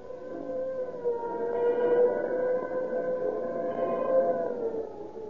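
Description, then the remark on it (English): A police siren wails steadily as police cars tear past, its pitch slowly rising and falling over several seconds. The tone is loud and continuous, with no voices over it. “When you hear the scream of the siren and police cars go tearing past, let it remind you that more police cars use Rio Grande cracked gasoline than any other brand.”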